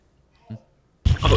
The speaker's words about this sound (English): Didn't you hit the one above it the last time to make the fart noise? There's two fart noises.